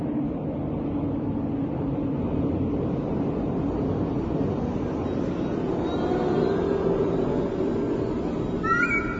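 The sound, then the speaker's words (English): A steady, loud aircraft engine drone, heard inside the nose of the plane after takeoff, fills the whole stretch, a dense low rumble with a hissy upper layer and no voices. Near the end a brief, higher tonal squeal briefly rises above it. “I can hear the hum here in the nose, and it's the best place to be.”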